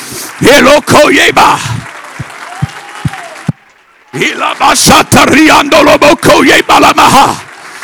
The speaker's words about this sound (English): Hey, I feel it in this place right now. I want you to clap your hands.